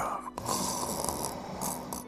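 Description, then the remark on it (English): A car gives off a rough, raspy snoring sound, fairly loud, rumbling steadily for about two seconds with a brief dip near the start and no voices. “How can a car snore?”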